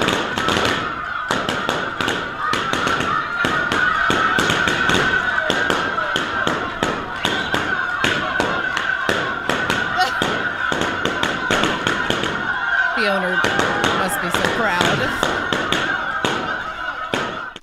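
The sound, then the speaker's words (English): A dog pops 100 balloons in a world-record attempt: a rapid, irregular string of sharp pops, dozens of them in quick succession, with excited voices and squawking-like cries mixed in throughout. “Well, maybe you'd be interested to know that they also just released the world record for some dude popping 100 balloons by a dog.”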